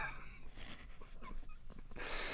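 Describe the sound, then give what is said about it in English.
The speaker's dog, Amir, breathes and snorts in a few rough, wheezy huffs in irregular rhythm over a soft, noisy background, with no talking. “Guys, really, this is Amir, it's my dog.”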